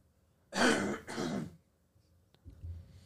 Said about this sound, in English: I figured out that I could mute the microphone on at will to cough. That's handy.